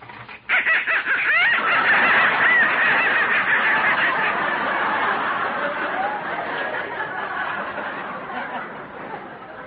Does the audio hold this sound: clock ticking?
no